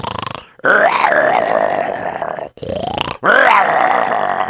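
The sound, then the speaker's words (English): A person imitates a lion snoring with loud, rough, growling vocal snores, three long drawn-out breaths separated by brief pauses. “And the lion just fell down on the floor and fell into a deep sleep. Probably the lion snored a little bit like”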